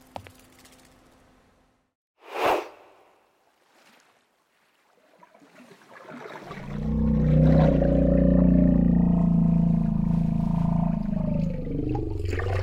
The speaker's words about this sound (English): A majestic white whale quietly emerged from the ocean, its enormous body glistening in the pre-dawn light.